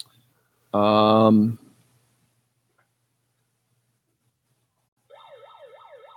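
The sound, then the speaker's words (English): A megaphone siren: a brief, loud, buzzy electronic blast, then after several seconds of quiet a quicker, fainter warbling wail that rises and falls steadily until the end. “my wife and mother hate the fact that I had this megaphone because all I do is talk to them like they can't hear me already. And it's so fun. And then I throw that siren on and it like, where's it at?”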